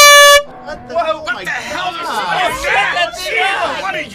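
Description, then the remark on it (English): A single loud, brassy air horn blast lasting under half a second, blown by a boy at a nativity scene as his gift to the baby Jesus, cutting off abruptly as excited voices and overlapping chatter take over. “I'm the Little Air Horn Boy!”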